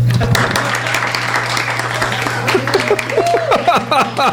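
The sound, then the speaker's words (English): An audience applauds novelist Christopher Meeks in a steady, dense wash of clapping for several seconds, with a low electrical hum underneath and a voice rising over the clapping toward the end. “Now, for Christopher Meeks. Applaud.”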